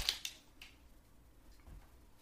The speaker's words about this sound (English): I'll just wait for you to finish crinkling that very crinkly paper, thank you.